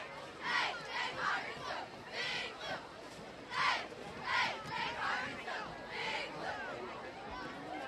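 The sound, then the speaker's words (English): A large outdoor crowd of Pirates fans at a Flagler County high school football game roars and cheers in rising and falling bursts, a steady wash of voices filling the open air with no single speaker standing out. “Quieting down the Pirate crowd here.”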